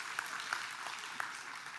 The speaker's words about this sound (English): You can give him a spattered clap.